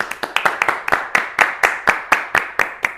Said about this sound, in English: I started clapping too. I was hoping we could keep that going for a while.